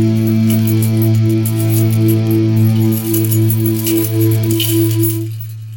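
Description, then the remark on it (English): A bunch of keys jangles and clinks in steady, busy shaking, layered over a loud sustained musical drone that fades out near the end. “He's got too many keys, John's got the keys.”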